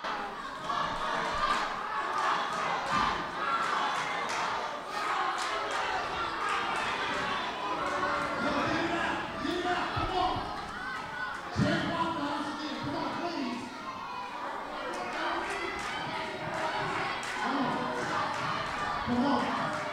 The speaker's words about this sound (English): Hey, look, first of all, before we get to you, Waffle House chant here. The crowd is chanting for Waffle House.